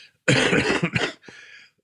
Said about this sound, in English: Oh God, yeah. Do I have to beep out the coughs?